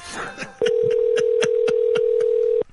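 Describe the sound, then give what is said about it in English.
A brief muffled rustle gives way to a steady, loud telephone tone holding for about two seconds, with faint evenly spaced clicks ticking through it like dialing pulses. “Now, we know it's ringing, but it's also it also did that stupid thing where it adds the one by itself.”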